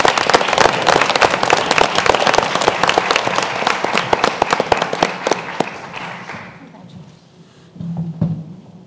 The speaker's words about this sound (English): So I ask once again that you please give a round of applause for all of our behavioral health personnel.